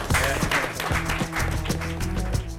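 An audience claps and cheers for the editor of a book in a steady, dense wash of applause that lasts a couple of seconds, with crowd voices mixed in and a low tonal hum underneath.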